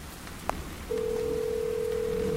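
After a faint click, a steady electronic ringback tone begins over a phone line and drones on evenly, the hum of an outgoing call waiting to be picked up. No one speaks.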